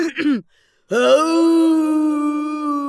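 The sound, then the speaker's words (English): A person imitates an old wolf's howl: a short vocal burst, a pause, then a long, low, steady howl that wavers slightly as it holds for about two seconds. “Let's do an old grandpa howl this time.”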